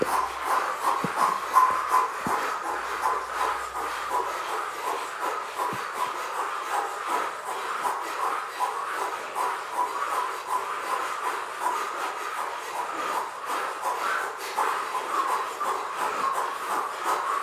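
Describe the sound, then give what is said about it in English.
Forceful rhythmic cannon breathing during a guided breathing exercise: a steady run of airy, hissing breaths pushed out in quick succession, keeping an even pace throughout with no talking. “then go back into the cannon breath”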